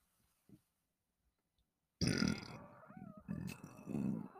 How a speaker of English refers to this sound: Excuse me. That was a hell of a burp.